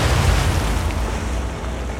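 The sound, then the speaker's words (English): A torpedo blast strikes the ironclad warship USS Tecumseh in Mobile Bay during its duel with Fort Morgan: a loud, deep, sustained roar of explosion with heavy low rumble, filling the whole moment and fading only slightly, with no voices. “Citadel answers in kind, but as the fleet fort duel gets underway, the Tecumseh connects with a torpedo.”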